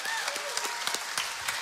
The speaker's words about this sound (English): Okay, VBS happened because of these four ladies. And can we give them a round of applause here?